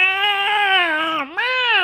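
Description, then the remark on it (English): During a tabletop role-playing game, a person imitates the bleat of a goat struck by a crossbow bolt. The long, wavering, nasal wail dips briefly in pitch, then rises and holds strong again. The sound is loud, with no other voices. “I think that's what goats sound like.”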